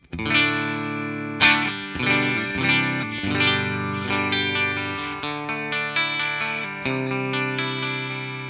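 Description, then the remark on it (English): Bright, clean electric guitar strums on the bridge pickup through a Fender Twin Reverb reissue amp, EQ set at 5 across and bright switch on, ring out with rich sustained chords, several strikes at irregular intervals over about eight seconds, fairly loud, with a slight shimmering effect and no voices. “Clean tone on the bridge pickup sounds like this.”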